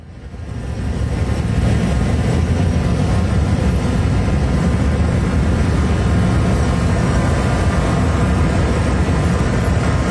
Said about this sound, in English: About 15 pairs of motorcycle police officers now exiting the church, leading the procession, taking Officer Peter Jerving to his final resting place. Milwaukee police officers on motorcycles lead the way.